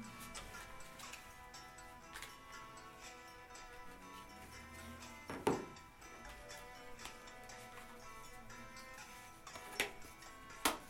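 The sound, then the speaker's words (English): Playing cards are shuffled and a card game box is unpacked: a quiet, steady patter of soft ticks and rustles, broken by a few sharper clacks and thumps near the middle and end. No one speaks. “Shuffle, shuffle, shuffle. I'm gonna unpack this one.”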